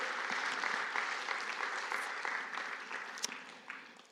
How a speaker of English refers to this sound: Can we give God a cheer this morning for his word and his Spirit?